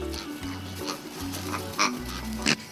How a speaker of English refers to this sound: And here's another big word associated with this little dog. Pharyngeal gag reflex, where sometimes air goes rapidly up their nose like a reverse sneeze and momentarily makes them snort like a goose.